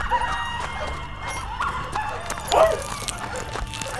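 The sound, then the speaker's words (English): Dogs bark in the distance, a few faint, scattered yips and barks rising over a low, steady outdoor rumble, with one slightly louder bark near the end. “But he could hear the men and dogs in the distance.”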